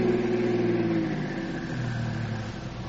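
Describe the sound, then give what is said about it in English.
A car engine hums steadily, its pitch gliding downward as the car slows and eases to a stop about half a block away, settling toward an idle. No voices are heard. “Now, let's get out of the car and sneak down there, just so we'll be close enough in case we have to go into action.”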